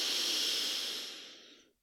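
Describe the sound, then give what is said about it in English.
A single long, deep breath drawn in through the nose during a guided breathing exercise, an airy hiss that holds steady for over a second before tapering off into silence. “But before we do, just take a nice, big, deep breath with me. Breathing in now through your nose.”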